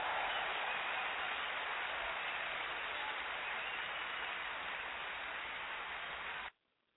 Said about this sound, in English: And give yourself a big round of applause.